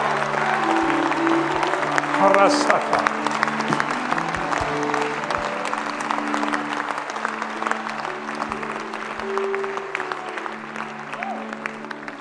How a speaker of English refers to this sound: Come on. Give the Lord a better hand clap than that.